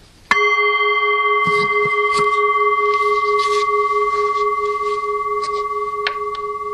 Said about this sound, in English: The mind tells us, well, it comes up here. It's coming from up here. It's coming from that gong right there